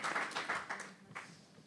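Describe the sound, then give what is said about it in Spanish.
A short burst of audience applause welcoming a speaker from the sponsor Tasty Hour at an event catered with rescued food, a dense patter of many hands clapping at a fairly soft level, fading slightly toward the end with no voices over it. “Un aplauso, por favor, para”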